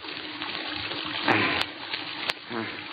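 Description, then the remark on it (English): Water gushes from a faucet opened during a washer repair while the water was thought to be turned off, a steady rushing hiss that surges louder about halfway through, with a few sharp clicks, and faint voices murmur underneath. “Now, I'll just open this faucet and”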